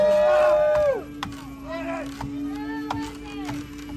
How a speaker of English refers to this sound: You will see some huge pieces of wood coming out of these cuts. You'll see them following a specific pattern. Getting that axe in there, following one hit right after another.